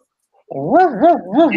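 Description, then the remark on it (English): A dog that has just come in from outside lets out a fairly loud run of whiny, yowling vocalizations, about three rising-and-falling wails in quick succession, with no one talking over it. “Sorry, dogs came in from outside.”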